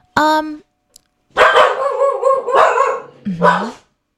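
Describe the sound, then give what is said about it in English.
Dogs bark loudly in several bursts: a short yelp, then a longer run of overlapping barks and whines, ending with another quick bark. “Those are my dogs.”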